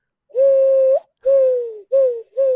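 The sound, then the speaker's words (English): A person imitates an owl with four loud hoots: two long drawn-out ones, then two shorter ones in quick succession, with no other sounds around them. “That's an owl. Like, oh.”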